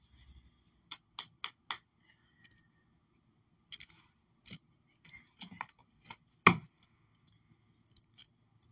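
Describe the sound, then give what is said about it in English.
Tarot cards being shuffled and squared up, making crisp clicks and taps in short irregular bursts, with one heavier knock near the end and no talking. “Feel like I spend half my time shuffling my cards.”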